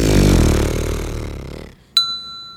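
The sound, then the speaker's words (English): A voice imitates a tuba pedal tone with a low, loud lip buzz, rich and rasping, held for under two seconds and slowly fading, then a single bright bell ding rings out. “Let's hear your tuba buzz. I'm going for a pedal tone.”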